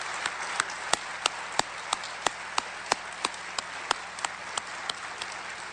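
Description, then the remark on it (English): An audience at NC State breaks into a steady round of applause for the 2009 Matthews medalists, a dense wash of clapping with a few sharper individual claps standing out in a regular rhythm, lasting about six seconds without any talking. “Please, join for a round of applause.”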